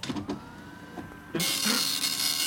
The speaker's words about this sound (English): My printer is not feeling great. I gotta get that looked at.